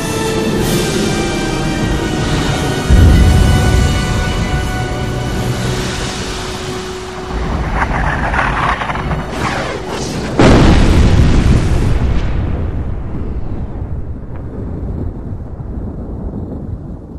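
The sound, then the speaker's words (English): A massive explosion from the collapse of the Well of Eternity by a ruined capital city erupts with deep, rumbling booms, a second heavy blast hitting around the midpoint before the roar slowly fades into a long, dwindling rumble. No voices. “The resultant catastrophic explosion shattered the earth and blotted out the skies.”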